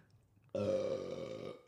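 A loud, drawn-out burp erupts after a short quiet moment, sustained with a rough, buzzing tone for about a second before cutting off. It sounds isolated, with no talking over it.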